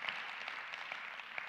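A church crowd at International Community Church claps steadily as a hand clap of praise to Jesus, a dense wash of many hands with a few sharper individual claps standing out, sustained at an even level for the whole moment with no one talking.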